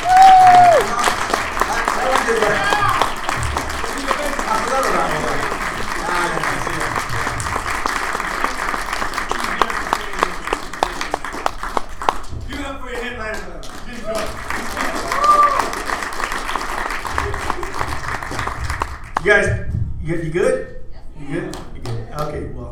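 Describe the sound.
An audience at a comedy show applauds in a dense, steady wash of clapping with voices mixed in and a couple of brief whistles, then thins to a few scattered claps near the end.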